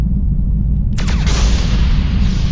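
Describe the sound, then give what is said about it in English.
A sci-fi multi-phased cannon, fired at a ship, blasts suddenly with a sharp descending zap, then a long roaring rumble that keeps booming loudly until the end, with no one speaking. “Multi-phased cannon targeting high-risk probability ship. Ready to fire on your command, Captain. Fire cannon!”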